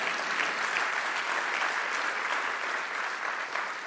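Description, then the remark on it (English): A crowd applauds steadily, dense overlapping claps forming a continuous wash of sound at an even, sustained level for the whole stretch, with no voices standing out. “Yes, we should clap for that.”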